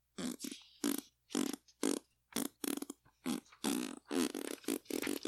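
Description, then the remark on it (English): A loud string of sputtering fart noises: about a dozen short, buzzy blasts in quick succession with brief gaps between them, continuing for several seconds with no talking. “As the fart goes and on, the tourist walks back in”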